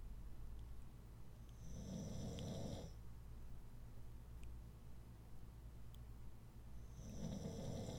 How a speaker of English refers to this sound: Listen to my dog snoring.